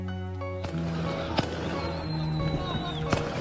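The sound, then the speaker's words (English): Three sharp gunshot bangs crack out at irregular intervals, fairly loud, over a dense, droning background of hum and indistinct voices: gunfire and explosions in the streets of the Sudanese capital during civil war, a tense, chaotic atmosphere. “Gunfire, explosions, men with guns now ruling the Sudanese capital. These are the sounds and sights of civil war.”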